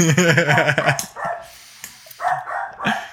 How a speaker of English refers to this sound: Yeah, the dogs are starting to bark. I don't know what's going on.